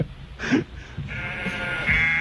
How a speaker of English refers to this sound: They play with other animals sometimes. Oh, no, it's sheep. Everyone loves sheep.